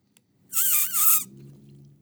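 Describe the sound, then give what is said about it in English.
Squeaky sipping of a beverage through a drinking straw gripped oddly with the lip: one loud, shrill, wavering squeal lasting under a second, followed by a faint low rumble. “No, I just kind of got a weird weird grip on the straw there with the old lip.”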